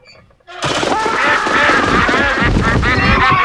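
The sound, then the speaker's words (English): Duck sound effects in a live show: a loud, dense burst of duck quacking and honking starts abruptly after a brief quiet moment and continues without pause, several calls overlapping as if from a whole flock at once. “First, you have sound effects and a duck that's supposed to fall when he shoots it up in the sky.”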